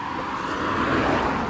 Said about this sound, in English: Oh, this car's flying.